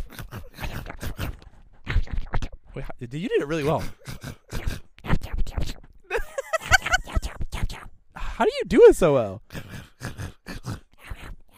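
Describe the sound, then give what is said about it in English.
A voice imitates the Minecraft food-eating crunch with rapid, repeated chomping bursts, broken up by short vocal groans and bits of conversational speech. “What's the Minecraft eating food sound?”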